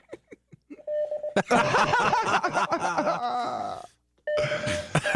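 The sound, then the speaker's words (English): Morse code practice beeps of random practice words: short bursts and a steady mid-pitched electronic tone. A stretch of laughing, groaning voices interrupts them before the tone returns at the end. “you and I are just going to start Morse coding to each other now.”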